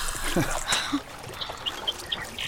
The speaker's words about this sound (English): I'm sorry, did I splash you? Oh, two can play at that. Hey. Why, you... Hey, I'm soaked!